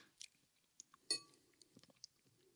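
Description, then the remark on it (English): Wet chewing of soft, lumpy, cold pasta baby food: irregular squelches and small mouth clicks with one louder smack near the middle, quiet and without any talking. “That is the most disgusting thing I've ever tasted in my life.”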